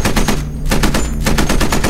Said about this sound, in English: 109 coming in, 11 o'clock level, Jack said after getting one line of fire off. The gun barked out several lines of fire, but stopped when he thought maybe he had hit the plane.